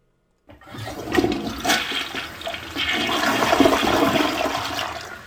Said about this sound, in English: I'm going to play the sound of a toilet flushing.